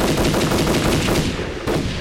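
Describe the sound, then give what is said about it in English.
Loud, sustained automatic gunfire, rapid shots overlapping into a dense, harsh roar with no pause, ending in a brief break before another burst. No voices are heard. “They keep coming! Then keep shooting!”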